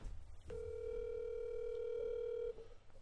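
A single steady electronic ringback tone of an outgoing phone call, one long buzzy ring lasting about two seconds, heard clearly over a faint low background hum with no voices.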